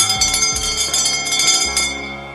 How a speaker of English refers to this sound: That bell means it's quitting time.